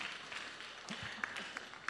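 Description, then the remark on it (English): An audience claps together in a steady, dense patter of many hands, fairly soft overall with a few sharper individual claps standing out near the end. “Let's clap for them now.”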